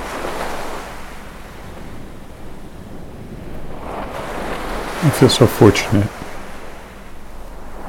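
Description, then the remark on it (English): Steady ocean surf rushes and breaks on a beach, a continuous washing roar with gentle swells and some wind, while a person speaks briefly over the waves partway through. “What I want for you to do is to just lay there and relax and listen to the waves.”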